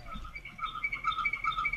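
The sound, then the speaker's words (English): A hamster wheel turning, making a faint, rhythmic series of high-pitched squeaks that repeat steadily, with no voices present. “It's not a beeping sound. That's the hamster wheel.”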